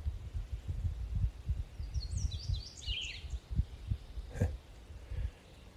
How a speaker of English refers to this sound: I'm sitting on a mountaintop alone in the middle of the woods, surrounded by birds.